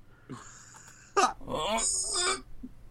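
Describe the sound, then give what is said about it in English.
A comic groan-and-grunt fart sound effect from the fart section of a sound effect collection: a soft grunt, a sudden loud burst, then a strained, drawn-out groan of about a second before fading to quiet. No talking. “And there's a sound effect under the fart section called groan and grunt.”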